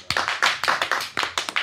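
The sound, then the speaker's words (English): A small audience claps their hands, producing a quick, uneven run of sharp, bright smacks that overlap slightly, about ten in all, with no voices in between. “Clap your hands if it's a hard no.”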